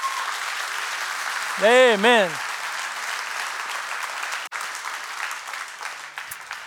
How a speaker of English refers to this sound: Can you give the Lord a clap?